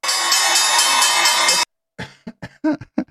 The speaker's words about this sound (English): Oh, no, they're not clapping for him. They're just showing the opening bell while he's talking. This is weird. This is really weird.